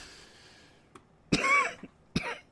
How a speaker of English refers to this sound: Apologies, we've officially hit the asthmatic cold and flu season, so trying my best to avoid the cough.